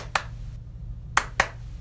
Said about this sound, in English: So if I did a clap, now your turn, you do a clap, and you do something. And then I'd do what you did. And then you'd have it.